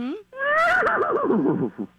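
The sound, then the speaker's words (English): Someone imitates a horse's whinny with their voice: a brief rising call, then a long wavering, trembling neigh that fades out, fairly loud, with no other sounds around it. “I mean, that's a good horse sound.”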